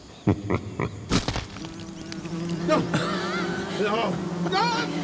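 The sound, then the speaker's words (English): A big wasp in Kabinsky's playground buzzes loudly in a steady, droning hum with a slightly wavering pitch, starting after a few brief bursts of sound at the beginning and continuing to the end. “Big castle, big dogs, big wasps.”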